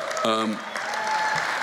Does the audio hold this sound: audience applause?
yes